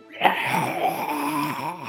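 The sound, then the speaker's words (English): A voice imitates the scream of an Oblivion Shade, a flying monster in a tabletop game, as it flies north out of sight: one sustained, raspy wail lasting nearly two seconds, its pitch wavering and bending as it holds, fairly loud and steady throughout. “It flies out of sight, and you hear it scream. You hear it go.”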